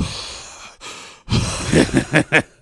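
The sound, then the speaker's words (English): A voice does exaggerated heavy breathing: a long breathy exhale, then a sharp inhale followed by a quick series of loud, rhythmic panting bursts, alone. “A lot of just heavy breathing.”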